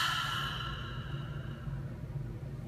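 A long, slow exhale through the nose during a guided breathing exercise, after inhaling and tensing the body tight: a soft breathy rush that starts fuller and gradually thins out over nearly three seconds, with no talking.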